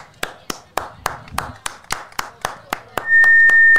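A lone person claps slowly and evenly, about fourteen sharp claps at a steady pace, before a loud, steady high-pitched tone cuts in near the end.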